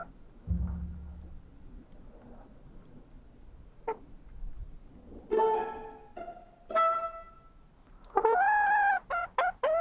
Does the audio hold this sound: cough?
no